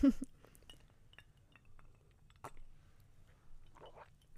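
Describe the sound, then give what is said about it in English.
Glasses clink together in a toast, a few short bright taps near the start and middle over a low background hum, with a faint voice-like murmur toward the end. “Yeah, so it's Friday, let's get our sip on and cheers.”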